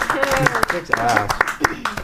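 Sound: small round of applause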